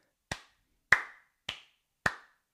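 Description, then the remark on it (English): Four sharp hand claps ring out alone at a steady, unhurried beat, each one crisp with a brief decay before the next, the clapping of a Japanese wrestling crowd, where promotions such as Freedoms allow fans only to clap, not yell. “You honor these claps and you know what they're saying.”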